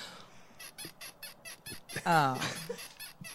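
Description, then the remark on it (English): Rhythmic, squeaky creaking of a bed, repeating in quick regular pulses before one longer, higher-pitched squeal, moderately loud with no talking. “Is that the bed creaking?”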